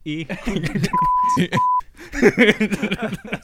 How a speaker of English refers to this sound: So anyway, after that intro of just bleeps, how is everyone?